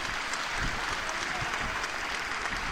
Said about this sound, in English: And Elliot Forbes is coming off to a round of applause here.